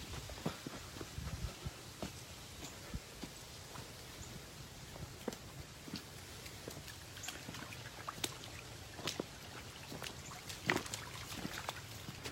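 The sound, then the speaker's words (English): A creek in a wooded park trickles and burbles steadily, with scattered small splashes and gurgles popping up over a soft continuous wash of water. Fairly quiet, with no voices. “The sound of the water in the creek.”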